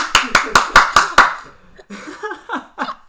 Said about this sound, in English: Another round of applause, ladies and gentlemen,